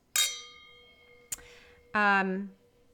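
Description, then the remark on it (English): Wine glasses clink together in a toast after a bottle of wine has been opened: a bright chime that rings on, then a quicker second tap, followed by a short burst of voice. “And so unlike we normally do, we did pop this wine already. So we're going to go ahead and cheers.”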